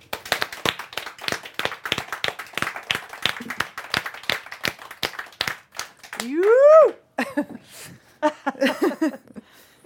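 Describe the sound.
A few seconds of crisp, rapid clapping from a small audience. The applause fades into a rising, sliding whoop and then voices talking.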